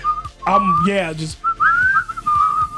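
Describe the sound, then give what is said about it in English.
Someone whistles a wavering, unsteady tune, the pitch sliding and dipping off key, interrupted briefly by a voiced outburst before the shaky whistling resumes. “I'm whistling all off tune”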